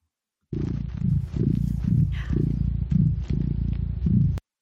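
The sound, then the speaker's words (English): Duarte, a gray domestic cat, vocalizes, a continuous low rumbling sound pulsing in a steady rhythm about twice a second for roughly four seconds, with no one talking. “Let's move on to Duarte's Corner, where my cat Duarte will share his opinions about the book.”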